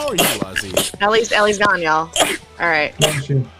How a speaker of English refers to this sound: She came on and sneezed and then went back to black.